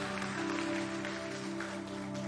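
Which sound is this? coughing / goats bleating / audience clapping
audience clapping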